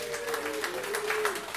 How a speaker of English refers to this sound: Like for me, I'm from a part of the hood called the Jungles. Clap it up if you know where the Jungles are.